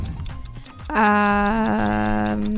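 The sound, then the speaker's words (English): A timer ticks at a steady, quick rhythm from start to finish, and after about a second a loud, sustained buzzy tone joins in beneath the ticks. No one speaks. “I just need to get the timer up.”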